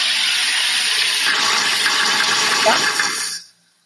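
A soda maker carbonating water gives off a loud, steady gassy hiss for about three seconds before it cuts off abruptly into silence.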